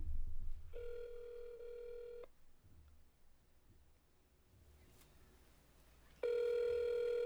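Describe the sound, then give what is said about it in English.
A phone line ringback tone purrs twice: a steady electronic tone lasting about a second and a half, a long quiet gap with faint background noise, then the tone returns loudly. “Which phone did you call off this?”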